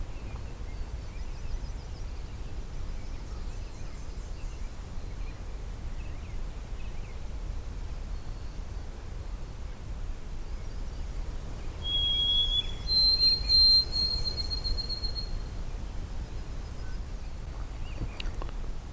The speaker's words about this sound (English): I'm just entering from the Pine Tree Harbour side. It's early morning. I've got a white-throated sparrow singing.